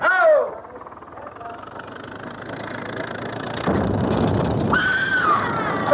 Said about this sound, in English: What was that? What was what? Didn't you hear it? Somebody screamed.